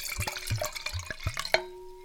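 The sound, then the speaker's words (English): Wine glugs into a glass in several quick pulses, ending with a bright clink of glass that rings on briefly. No one speaks. “Oh, well, that was quite a big glass for me.”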